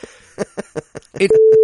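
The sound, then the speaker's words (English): A few quick bursts of speech give way to a loud, steady, mid-pitched bleep tone that holds unbroken until the end, like a censor beep covering a word. “Do you know how to do I'm that beeping beep that. Thing? I know how to use the beep.”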